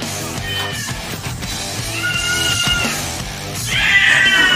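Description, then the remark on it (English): A cat meows and caterwauls in long, drawn-out yowls, loud, rising into a harsher, more strained wail toward the end. No one speaks. “Our cat, if it was in another household.”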